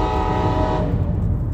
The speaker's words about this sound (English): That, if you heard that horn, was firefighting cowboy with his train horn.